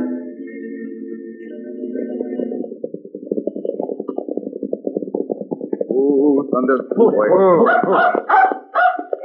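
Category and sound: animal, dog barking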